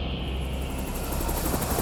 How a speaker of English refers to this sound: Remember, as soon as the chopper lands, start to run for it.